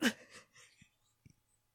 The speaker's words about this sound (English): Are you breathing? Yeah. Yeah!